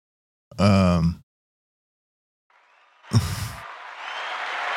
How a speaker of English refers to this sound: That sounds like a standing ovation. I'll give it to him. I think they're standing.